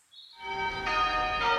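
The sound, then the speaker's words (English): Church bells in Cape Town ring out for 10 minutes in honor of Archbishop Desmond Tutu, in a rich, sustained peal, their overlapping tones swelling as new strikes layer over the lingering hum. No voices are heard. “This morning, bells ringing out for 10 minutes in Cape Town,”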